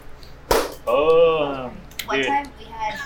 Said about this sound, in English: you want to do another sound clap for us? Sure.